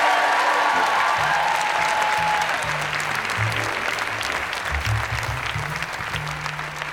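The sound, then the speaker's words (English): An audience applauds a singer steadily for several seconds, a dense, loud wash of clapping hands that stays sustained throughout, with faint low tonal sounds underneath. “Let's have a round of applause for ….”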